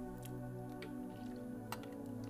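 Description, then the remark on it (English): A few soft, wet sips of water, short, spaced out over a couple of seconds against a steady low hum, with no talking. “I have a water today in today's episode, just to let you guys know.”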